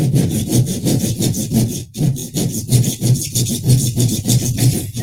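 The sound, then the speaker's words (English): A hand saw cuts through wood in steady, rapid back-and-forth strokes, each one a loud raspy scrape, with one brief pause before the sawing resumes at the same even rhythm. “Saw the old.”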